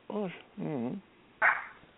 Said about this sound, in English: My dog's barking. I'm sorry, I can't do anything about that.